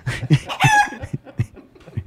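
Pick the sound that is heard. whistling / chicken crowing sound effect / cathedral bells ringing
chicken crowing sound effect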